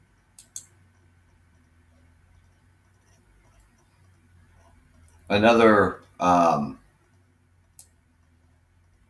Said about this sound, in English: Now, I was looking at this one topic here. I can get my cursor to move over here. Sorry about the clicking sounds.